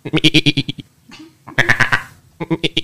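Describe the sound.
A human voice imitates a bleating goat in three loud bursts, each a quavering, stuttering warble, separated by brief pauses with a faint breathy sound between them.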